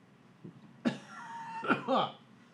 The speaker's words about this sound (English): I also have this tickle in my throat. I feel like I'm constantly about ready to cough, which is great audio.